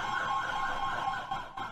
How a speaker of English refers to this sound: There's an ambulance going by.